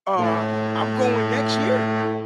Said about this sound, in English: You know what? Foghorn to you.